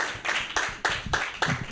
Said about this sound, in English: Keep it going! That's right. That's good. We're getting, I was a little worried that the clapping was going to go down, but the clapping is good.